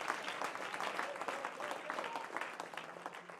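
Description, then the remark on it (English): A crowd claps hands steadily throughout, a dense, continuous patter of many overlapping claps at moderate volume with no pauses. “Yeah, come on, clap your hands.”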